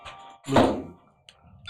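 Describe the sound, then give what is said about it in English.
A phone rings with an incoming call from Marquee, one loud, bright electronic chime that swells and fades over about half a second, followed by quieter faint tones and low background noise. No one speaks. “That's why there's my phone right there.”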